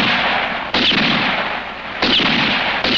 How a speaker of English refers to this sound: And so I fired again. Four shots like four fateful raps on the door to my destiny.